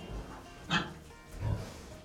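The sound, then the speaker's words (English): Pigs grunting on a working farm, three breeds including Mangalitsas, a Hungarian breed, housed across the yard: a short, sharp snort around the midpoint followed by a lower, rougher grunt, with no one speaking. “We've got 3 breeds of pigs, which are currently housed just across the yard.”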